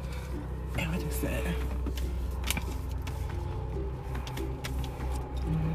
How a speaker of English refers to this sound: Okay, let me open the door. We're still in the fucking car.